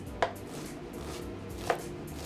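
Two crisp knife chops through an onion on a cutting board for a rice dish, spaced well over a second apart, each a sharp woody knock over a low, steady background hum.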